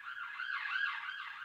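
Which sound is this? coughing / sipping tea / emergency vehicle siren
emergency vehicle siren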